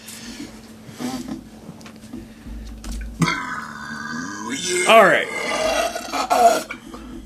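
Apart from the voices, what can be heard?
burping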